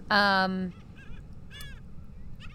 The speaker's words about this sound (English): They're so funny. I don't know if you can hear them. The birds are making funny noises.